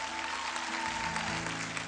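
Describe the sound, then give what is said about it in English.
An audience claps together in a steady, dense wash of applause, with sustained low musical tones humming underneath throughout. “Somebody clap like God could actually pull it off.”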